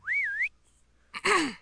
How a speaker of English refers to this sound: And let out a loud whistle.